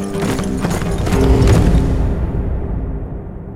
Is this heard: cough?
no